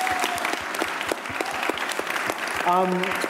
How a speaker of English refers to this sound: I reckon one more round of applause. It's just amazing how these kids have done.